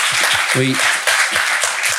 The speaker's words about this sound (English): You're the first WA investment they've made. I think that's a round of applause, isn't it? Come on. That's fantastic.